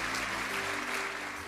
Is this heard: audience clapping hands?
yes